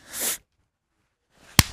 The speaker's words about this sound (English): Ah! That was nice and hard. That was a hard one. I just got to get a little pop in there. You did. That was. I haven't been slapped in a while.